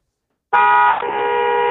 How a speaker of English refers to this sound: How long you want the honk? Give me a nice 10-seconder.